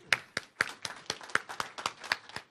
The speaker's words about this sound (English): Okay, well, let's give our panel a round of applause.